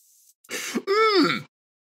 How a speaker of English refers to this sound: When you revealed this to me, you were actually sort of like nervously coughing.